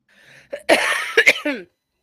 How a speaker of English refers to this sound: And oh, sorry. I thought I muted that. You did that backwards. Sorry about that. Really got a cough going this morning.